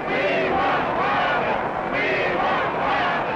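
A large crowd at a Wallace rally cheers and chants loudly, interrupting his speech, many voices blending into a continuous roar with rhythmic, rising-and-falling swells of shouted chanting of "We want Wallace!" throughout.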